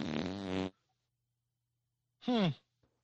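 Two loud, buzzy fart noises separated by a couple of seconds of quiet: a steady, rumbling blast lasting over half a second, then a shorter one that squeals downward in pitch.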